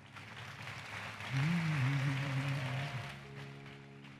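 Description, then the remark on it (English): An audience claps steadily, a dense wash of handclaps lasting the whole clip, while a low sustained melodic tone swells briefly in the middle and a softer held note lingers toward the end. “If you want to clap your hands, please do it better.”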